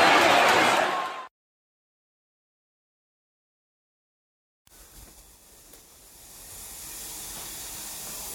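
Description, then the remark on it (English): Shower water sprays with a loud, steady hiss, cuts off into about three seconds of silence, then returns as a softer rushing spray that slowly grows louder. “Taking a shower.”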